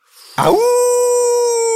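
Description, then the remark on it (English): A person imitates a wolf howl: a rough, breathy onset rises into a long, steady, tonal note that holds loudly and evenly, with no other talk. “I'm going wolf. I'm going to be a wolf.”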